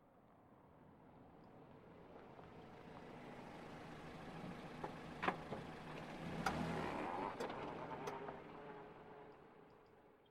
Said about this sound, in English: No, turn it out, quick. There's a car coming.